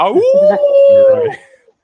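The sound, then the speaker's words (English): A person imitates the howl of a creepy cartoon wolf, one sustained rising-then-steady wail lasting over a second, loud, trailing off at the end. “He was like that creepy wolf from them Looney Tunes cartoon.”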